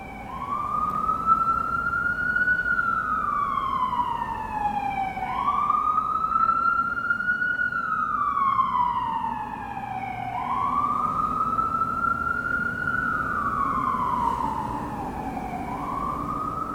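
An emergency vehicle siren wails in slow, repeating rise-and-fall sweeps, about three full cycles at a steady, moderate loudness over a low background rumble, with no one talking.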